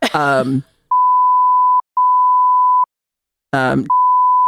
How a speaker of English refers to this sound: Or beep names or something, but yeah. Yeah. Let's beep names. I love a beep name. The drama of a name beep really fucking gets me.